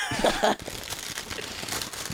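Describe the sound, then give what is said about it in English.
Patty paper crinkles and rustles in a steady, scratchy stream of crackles, starting just after a brief burst of louder sound at the opening. “You're hearing patty paper and you think it's a burger.”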